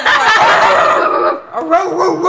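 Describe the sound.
A person loudly imitates a dog, letting out a run of yappy, voiced barks, pausing briefly partway before barking again.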